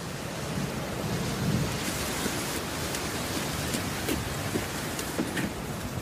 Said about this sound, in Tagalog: Kasi tignan mo, oh, lakas ng ulan. May bagyo yata. Ha? Ano yon? Ang lakas ng ulan eh. Hindi kita marinig masyado.